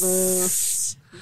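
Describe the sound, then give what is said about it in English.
A person makes a drawn-out, sibilant hiss like a snake, starting with a voiced tone and then trailing into a breathy hiss, followed by a brief second hiss. “Everyone's got snakes in their pants.”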